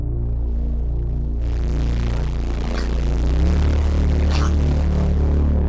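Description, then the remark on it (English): A loud, sustained synth patch tone with a deep, steady low end; about a second and a half in, the fuzz on a saturator plugin is cranked up, adding a hissing white-noise layer over its upper range that persists to the end. “What it does very well, better than other plugins or what's unique to it, is if you crank up this fuzz, it creates a kind of a white noise layer.”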